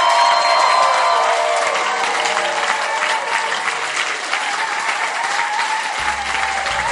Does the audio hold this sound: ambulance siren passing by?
no